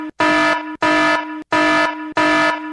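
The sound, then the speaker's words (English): A loud, harsh fog horn warning blares in four even blasts, each about half a second long with short gaps between. The tone is strong, buzzing and brassy, with no voices. “Do you have the horn by chance, the warning horn? There's a fog horn.”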